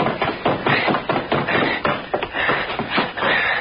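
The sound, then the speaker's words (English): Two men, one holding a dead man in his arms, tumble down a flight of stairs in a loud flurry of heavy thuds, bumps and scuffs that keeps going for several seconds with no talking. “Rode all the way down the stairs with him.”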